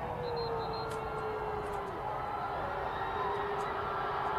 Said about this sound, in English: Oakland cheering section over there. Getting into it. The Blue Crew.